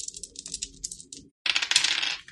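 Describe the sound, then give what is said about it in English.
Ten-sided dice clatter and rattle across a hard tabletop in two quick bursts, a short tumbling roll, a brief pause, then a louder, denser clatter as a third die is tossed. “No, I mean, I rolled 2d10 and I got a 1 and a 2. And then I rolled the third one.”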